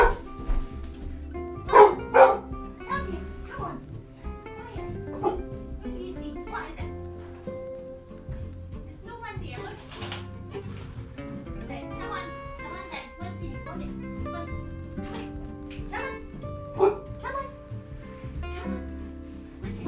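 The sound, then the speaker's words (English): A dog barks in short, loud bursts, a pair early on and another near the end, reacting to someone shutting a door, while people talk in the background throughout. “It's when she hears...”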